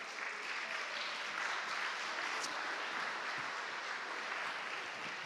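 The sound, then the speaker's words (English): Steady applause from a crowd for the evening's speaker fills the whole stretch, a dense, even wash of many hands clapping at once with no pauses and no voices rising above it. “Can we give a round of applause to our speaker tonight”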